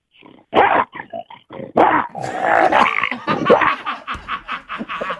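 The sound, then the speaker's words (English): A person imitates a lion's roar, voicing a loud, raspy growl that starts in short rough bursts, swells into a sustained roar, then breaks into stuttering pulses at the end. “Do you still give them a little lion roar?”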